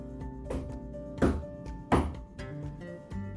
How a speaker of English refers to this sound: The prince knocked 3 times on the witch's door.